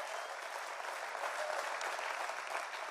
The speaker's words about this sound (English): And as always, a special hello to our family at SCI Chester in partnership with God Behind Bars. Clap for them.